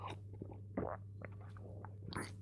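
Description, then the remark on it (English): Someone drinks water, with a few soft wet gulps and swallows spaced about a second apart over a steady low hum. Nobody speaks. “I'm still popping, but at least I'm drinking water, right?”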